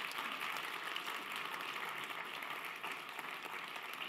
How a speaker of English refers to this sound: So let's applaud each other, okay? Let's appreciate our day here.